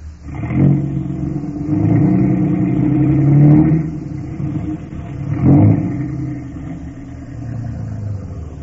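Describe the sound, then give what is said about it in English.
A truck engine, the thirteenth truck in a line coming along the road, rumbles, its deep drone swelling and easing a few times as it draws near. Steady and fairly loud, with no voices. “And here comes 13.”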